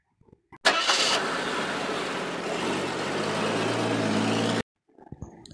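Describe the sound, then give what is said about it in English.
A car engine starts as people drive away from a ranch: it cranks with a brief whirring burst, then catches and runs with a steady, loud rumble for several seconds before cutting off abruptly, followed by a few faint clicks. “We got in the car and left the ranch.”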